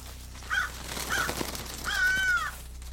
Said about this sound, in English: We kept going, and out of an adjacent, open-sided barn, a flock of crows flew out, as if they were disturbed by something.